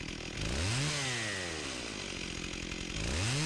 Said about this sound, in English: is it a chainsaw from Gears of War? That is correct. Yeah. What? Yes. Yes, it is. Mm-hmm. Chainsaw from Gears of War. I didn't remember sounding so, I guess, a chainsaw-y. It was, straight up chainsaw.